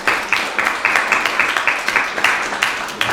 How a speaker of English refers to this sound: And I would like us to take a moment, even though our service is long, to clap it up for our kids right now, because they're doing a great job.